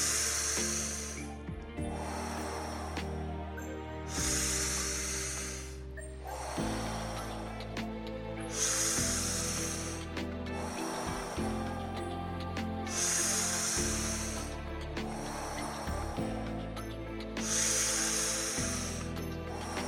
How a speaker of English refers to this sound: As we already begin to prepare for the third round, continuing to guide yourselves more and more, finding the breath, finding your comfort, as we take a deep breath in, and exhaling back out.